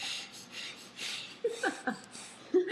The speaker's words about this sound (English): I've made an upside down, a triangle. That's a triangle. A triangle with my thumbs fingers and thumbs, and I've pressed my thumbs into my nose, and I'm breathing out my nose.